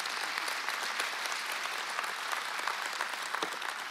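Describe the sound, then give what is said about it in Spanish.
Steady audience applause fills the whole stretch, a dense wash of many hands clapping at an even, sustained level with no voices rising above it. “¿Cuántos dan un aplauso para estos dos?”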